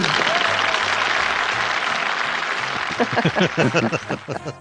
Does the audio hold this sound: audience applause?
yes